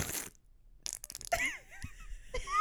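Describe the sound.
A voice imitates farts with the mouth, using different parts of the mouth and the tongue: a short breathy blast, a pause, then a string of sputtering, wobbly raspberries and squeaky pitched toots, ending in a louder burst.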